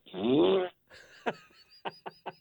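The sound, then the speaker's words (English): A loud, buzzy fart noise, played on a website when clicking any link to buy something, blares for under a second, wobbling in pitch, then gives way to a few short, sharp bursts over a faint tonal hum. “when you clicked on any link that went to buy something, an album, a poster, anything, all you got were farts.”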